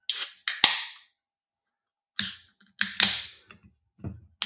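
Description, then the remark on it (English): Beer cans, one a Flying Monkeys Craft Brewery Juicy Ass IPA, cracked open: two bursts of sharp metallic pops, each trailing into a bright fizzing hiss, followed by a few softer clicks. Loud and crisp, with no talking. “Let's crack these beers open.”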